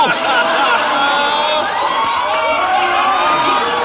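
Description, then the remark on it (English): A loud, sustained burst of audience cheering, with many overlapping shouts and whoops forming a dense, steady roar that holds at full volume for about four seconds without clear speech. “Oh, but that one you cheer for.”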